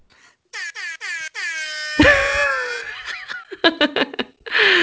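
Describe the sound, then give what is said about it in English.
A loud air horn honks in four quick bursts, then sounds one longer blast, followed by a burst of laughter and giggling with bits of breathy chuckling. “That's right. Air horns abound.”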